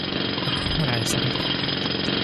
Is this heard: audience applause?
no